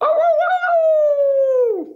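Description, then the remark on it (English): A person gives a single sustained howl imitating a wolf, loud, holding a steady pitch for nearly two seconds before sliding down and trailing off. The voice sounds human and no other sounds accompany it. “That was definitely a wolf, not a hound dog.”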